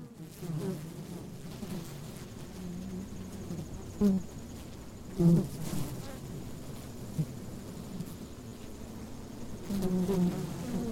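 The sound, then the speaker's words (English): A dense, steady hum of many honeybees from a local bee farm buzzing together inside a honey super, a hive box used to harvest honey, as they store processed nectar; low and continuous, with a few louder swells as individual bees pass by. “Those are honeybees from Ithaca Honeyworks, and you're hearing the bees storing processed nectar in what's called a honey super, which are used to harvest honey.”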